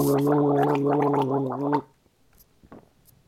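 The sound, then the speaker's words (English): Someone gargles water in the throat for nearly two seconds, a steady, buzzing, bubbly rattle with a low voiced hum, then it stops abruptly, leaving quiet with a few faint mouth clicks. “If no one likes the sound of gurgling water, skip 15 seconds.”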